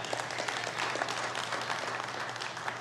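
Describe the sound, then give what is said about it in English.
A church audience claps together at the pastor's prompt in a steady, dense burst of applause, the many hand claps blurring into a continuous, fairly loud patter that holds for the whole moment. “I reminded, yeah, that's a good place to say amen or clap or do something, church.”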